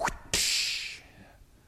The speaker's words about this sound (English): Stop making my father's house into some two-bit shopping mall, he screamed to them as he popped the whip.